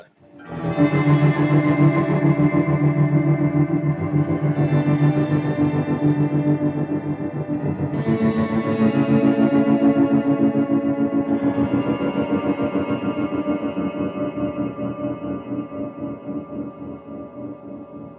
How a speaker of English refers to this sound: You can take it to extreme by let's turn up the low and the high and the decay and the mix, go full wet and full shimmer, and get some you're arming a reverb. You're totally arming a reverb. I love it. We'll go full full deep modulation here too.